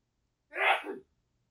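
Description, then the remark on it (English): A single sharp sneeze bursts out, a quick explosive blast of breath lasting about half a second, with silence on either side. “Bless you.”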